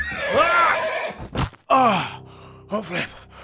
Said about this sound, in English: We are a shadow in the mist, a whinny on the wind, a horse in the dark in the mist and the night!